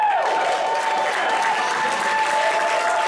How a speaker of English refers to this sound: Thank you. I really appreciate the applause because now I'm desperate, realizing that as a stand-up comic from Japan, when my English was terrible, I was much funnier.